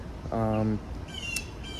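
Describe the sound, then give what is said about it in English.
A bird calls in the background, a brief low squawk followed by thin, high chirping notes, moderately faint against a steady ambient hiss. “Can you hear that bird?”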